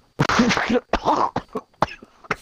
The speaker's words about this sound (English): It made me fucking cough. Jesus Christ.